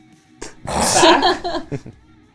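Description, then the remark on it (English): A voice mimics someone gasping for air: a sharp intake, then a long, strained, breathy burst and a couple of short ragged huffs, fairly loud, with no words. “And she's just kind of gasping.”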